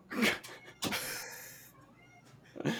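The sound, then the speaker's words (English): A female cat meows three times, a short cry, then a long drawn-out wail, then another short call, with no talking. “Feral Cats is the new theme of our podcast.”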